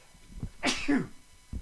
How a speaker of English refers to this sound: God bless you. A little sneeze there. No, I'm not sick. I am. I have, you know what I got? I got, I don't know what I got. I had a sneeze. It was a live sneeze on the radio.